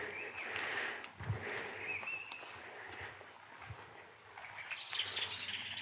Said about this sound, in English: There's another alarmed blackbird.